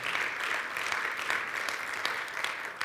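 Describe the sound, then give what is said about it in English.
A crowd applauds steadily, many hands clapping in a dense, continuous patter that holds an even loudness for about three seconds, with no voices standing out. “Let's give the Holy Spirit a great round of applause because he's working.”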